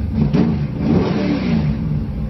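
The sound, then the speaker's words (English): A car engine at a car show revs hard through its mufflers, a deep, rumbling roar close to the mic that surges and holds steady for a couple of seconds with no talking. “All right, fire that baby up.”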